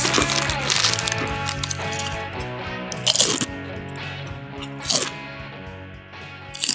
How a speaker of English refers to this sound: That's a good crunch. Yeah, I shouldn't say this because I probably will definitely use this as a snack.